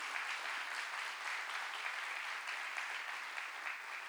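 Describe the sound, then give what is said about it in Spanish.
A church audience gives a loud applause to the Lord, a dense, sustained wash of many hands clapping at an even loudness throughout, with no voices standing out. “¿Por qué no le das un fuerte aplauso al Señor?”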